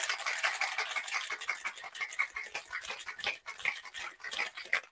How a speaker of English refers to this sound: You got it in the shaker. You got ice. You're gonna shake vigorously. Just shake it till you feel the shaker get like cold to the touch.